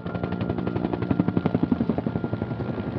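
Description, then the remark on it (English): A helicopter makes passes over the trees, its rotor beating in a fast, steady chop that swells slightly louder midway, with a broad engine roar underneath and no voices. “The next morning, a helicopter was making passes over the trees.”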